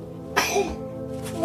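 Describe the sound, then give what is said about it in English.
A single sudden sneeze, a loud breathy burst that fades quickly into a short voiced tail, followed by a faint breathy exhale over a steady low hum. “Bless you, darling.”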